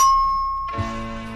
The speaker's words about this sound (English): Every time you hear this chime, it means it's time to turn the page in your storybook. Now we are ready to begin. Open your book, and we will start our adventure. And remember, when you hear the chime, turn the page.